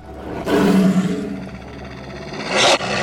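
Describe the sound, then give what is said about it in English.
A loud creature roar from a shapeshifter in full shifted form bursts in and stretches into a long, wavering howl, closing with a sharp, harsh flare of noise; no one speaks. “In the middle of all of this, you hear a roar.”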